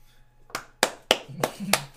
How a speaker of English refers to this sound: We're clapping.